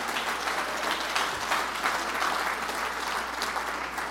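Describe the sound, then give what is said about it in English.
A church audience claps hands in praise, steady, dense applause that fills the whole clip, a continuous wash of many overlapping claps at an even, fairly loud level with no voices standing out. “Clap your hands and praise Him all over the building.”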